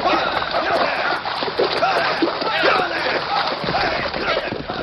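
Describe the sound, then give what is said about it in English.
Heavy, continuous water splashing and sloshing, loud, as a man pulled from his saddle is dragged through a creek by roped riders, with men's voices shouting over the churning water. “Then pull him from their saddles. Drag him through the creek.”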